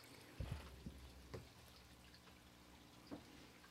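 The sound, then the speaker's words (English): Several short, wet spurts of liquid squirting in irregular bursts, a quick cluster early on and a lone squirt near the end, fairly quiet with no talking. “Is that the sound of squirting? Sure is.”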